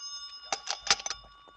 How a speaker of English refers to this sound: That's your phone. It's probably your son.